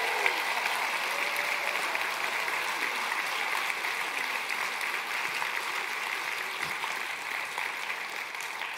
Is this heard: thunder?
no